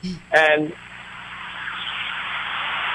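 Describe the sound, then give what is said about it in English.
A big truck rolls past, its broad roaring hiss swelling steadily and staying loud to the end, after a brief burst of voice at the start. “Oh, a big truck going by.”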